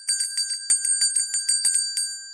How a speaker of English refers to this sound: Hit that notification bell.